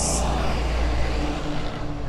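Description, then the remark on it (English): A school bus rumbles past on a day threatening rain, its deep engine drone and road noise holding steady and loud for a couple of seconds with no one speaking. “School bus.”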